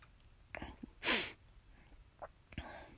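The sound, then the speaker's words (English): A single sharp, loud throat clearing bursts out in the middle, a harsh breathy blast that stands well above the quiet background, with a few faint breaths and small mouth sounds around it. “So I had to clear my throat during the thing, and there's so many reasons I need to do this earlier in the day.”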